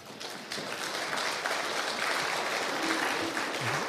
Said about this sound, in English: Yeah, go ahead, clap.